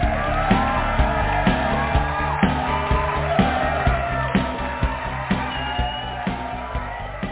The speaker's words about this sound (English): I never get tired of hearing the wild applause from the millions and millions and millions of people who are tuning in live